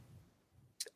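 A single crisp keyboard keystroke clicks sharply near the end of a second of near silence, with only a faint low hum before it.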